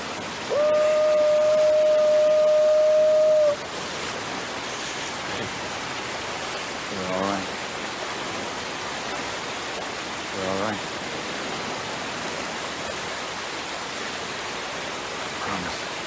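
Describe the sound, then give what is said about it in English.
A loud, steady roar of a waterfall fills the whole recording. A sustained whistle-like tone sounds over it near the start, and a couple of brief, muffled voices surface through the rushing water. “So we're back at the son and the dad at the waterfall, and he's very loud.”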